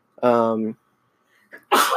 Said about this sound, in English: And bless you. Sorry. You're allergic to Patreon goodies.